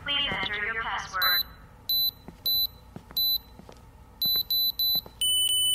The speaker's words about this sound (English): Let me just turn the alarm off.